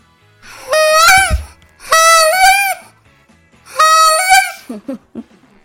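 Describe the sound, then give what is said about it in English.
Three loud, drawn-out honks from a Goose Commander goose call by the Duck Dynasty makers being blown, each about a second long with a nasal, reedy wavering tone, followed by a few short breathy squeaks at the end. “We got a goose call.”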